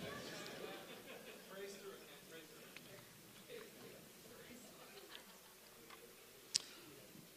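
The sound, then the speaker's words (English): A clock ticks steadily, soft regular ticks with faint murmuring voices underneath and one sharper click near the end. “I curse that clock in the name of Jesus.”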